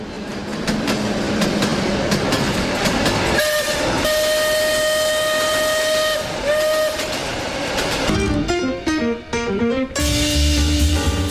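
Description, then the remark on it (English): A steam train chugs steadily as its whistle blows several times, long sustained tones over the rumbling rhythm, followed by a burst of shorter, higher whistle notes near the end. “All aboard the Truth Express with your conductor, Erskine, who gives you the latest on national news, politics, policies, business, and government issues.”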